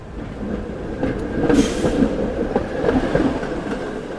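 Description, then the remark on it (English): A San Francisco cable car clatters and rumbles along its track, with steady rhythmic clacks and metallic rattling over a low mechanical drone, and a brief hiss midway. No one speaks. “And another one that we heard were the cable cars.”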